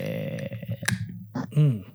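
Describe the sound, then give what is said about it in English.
A single soft, sharp crack of a beer can being opened, followed by a brief hiss, set among low grunting and throaty vocal sounds. “Softer crack. It was nice. It was nice. It was like a sizzle crack.”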